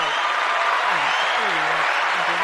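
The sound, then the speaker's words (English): Steady, dense applause from a crowd, many hands clapping at once in a continuous loud wash, with faint low voices murmuring underneath. “It's COVID-19. Round of applause.”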